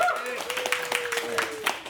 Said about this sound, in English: A big round of applause for Chris Banks!